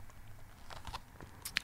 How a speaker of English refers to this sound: In fact, let me take a sip of this water. Might even have to have a sip of this tequila. Hold on. Hold on. Give me one sec.